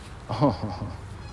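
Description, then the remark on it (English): A baby deer calls with a short, nasal, wavering bleat, followed by two quicker, softer cries, set against a faint, steady background hiss. “oh, you hear that baby deer?”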